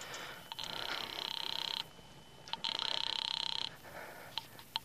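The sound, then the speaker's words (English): A telephone call placed from a drugstore phone booth rings twice through the line, each buzzing, trilling ring lasting about a second with a short pause between, heard over faint background hiss and a few soft clicks. “I went to the phone booth and called my sister Lil.”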